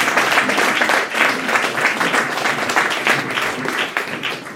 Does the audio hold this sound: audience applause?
yes